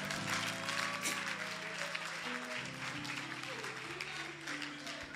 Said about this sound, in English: Clap for the Lord Jesus.